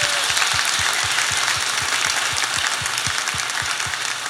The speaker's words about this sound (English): So I want to give Jess a round of applause. Thanks, Jess.